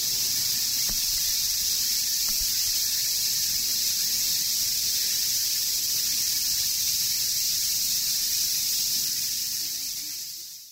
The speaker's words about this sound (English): So I'm going to play again the Havana syndrome first, and then a different cicada recording, a more washed out one, following it for comparison.